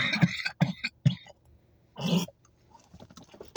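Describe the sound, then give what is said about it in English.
A loud run of three quick raspy coughs, then a longer gravelly throat clearing after a short pause, trailing off into faint quieter sounds. “I promise I wouldn't cough anything up, but I had to.”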